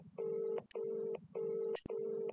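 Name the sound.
telephone dialing and ringing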